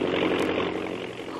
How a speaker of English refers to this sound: He hurries her aboard and signals the takeoff. The plane moves forward with a jerk, throwing Kitty off balance onto the floor of the cabin.